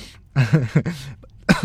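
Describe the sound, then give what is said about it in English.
A few fairly loud coughs in quick succession, rough and throaty like someone clearing their throat, followed by a short pause and one final sharp cough. “So yeah, sorry for coughing.”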